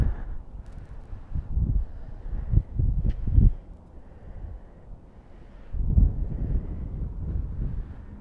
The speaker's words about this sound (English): Ooh, it's windy.